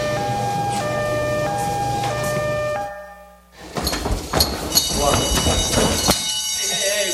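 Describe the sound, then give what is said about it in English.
A loud two-tone alarm siren alternates steadily between a high and a low pitch, breaks off for a moment, then resumes amid clattering noise and raised voices. “No, the alarm.”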